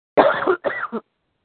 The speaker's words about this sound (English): Uh-oh, somebody's having a Hillary Clinton cough fit over there.